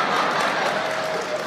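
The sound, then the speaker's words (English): A short burst of applause from a small group, steady, with dense overlapping claps for about a second and a half and no voices over it. “That's not an applause moment.”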